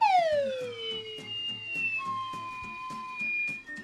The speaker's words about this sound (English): This is an incredible slide whistle. You should do this. This is an incredible one.